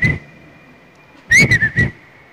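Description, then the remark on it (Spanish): Someone leaning their head out of a window whistles a long, steady held note that wavers slightly in pitch midway, while a cluster of three louder, rougher bursts breaks in near the end. No talking. “Y mantuvimos como él asoma la cabeza por la ventana y comienza a silbar.”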